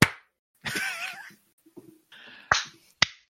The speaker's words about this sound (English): Now Chewie's running because he's wondering why I'm clapping. That's why I stopped doing this in the first place.